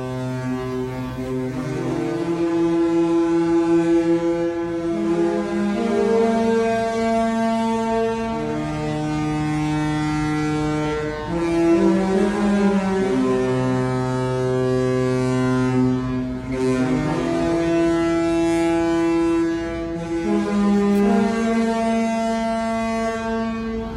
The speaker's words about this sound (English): And then you'll hear the three horns sounding that we're leaving port.